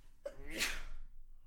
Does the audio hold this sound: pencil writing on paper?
no